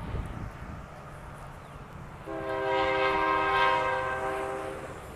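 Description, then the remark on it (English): A train rumbles past while its horn blares a sustained, loud, multi-tone blast for several seconds over the steady rolling noise of the cars. “And there's a fucking train right there.”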